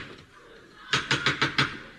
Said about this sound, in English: Excuse me. Is this Mr. Cron's house? It is, yes. Good. Then I'll knock.